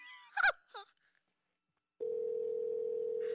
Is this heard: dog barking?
no